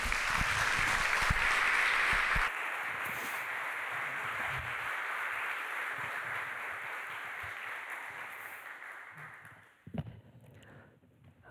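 A church audience breaks into applause for a woman who has just spoken, a dense, steady wash of many hands clapping that holds for several seconds before tapering off, with a few scattered claps and shuffles at the end.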